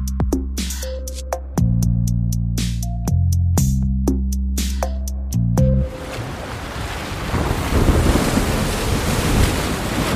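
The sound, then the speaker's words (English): A short run of plucked musical tones gives way to a steady, loud rush of wind and crashing ocean waves that fills the second half, with no voices. “Imagine yourself in the middle of the ocean, climbing up a steep ladder and hoisting cases of your testing gear by hand from a boat moving at high waves onto an offshore substation platform.”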